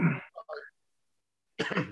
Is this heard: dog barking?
no